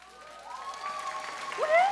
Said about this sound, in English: Everybody here is clapping.